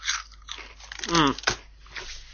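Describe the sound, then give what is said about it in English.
Loud, crackly crunching of very salty crinkle-cut potato crisps being bitten and chewed in the UK, several dry bursts in quick succession, with a brief muffled vocal sound mixed in partway through. “I know we were really desperately in need of salt, but judging by the taste of these crisps, it seems like we drained the entire sea of all its salt content.”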